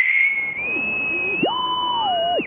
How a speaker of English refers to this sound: Would you like to hear, Paul Filer's bosun's whistle that was at Pearl Harbor? Yes, we would. Okay, my dog might go nuts, but here we go.